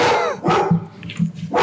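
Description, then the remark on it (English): A pet dog barks several times in short, sharp bursts, fairly loud, with a low steady hum in the background and no talking. “Ah, my dog is barking.”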